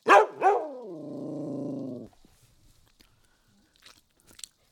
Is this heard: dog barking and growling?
yes